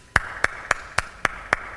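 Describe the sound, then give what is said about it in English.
Polite clapping: seven crisp, evenly spaced claps in a steady, unhurried rhythm at moderate loudness, with no voices. “Clap when they're done.”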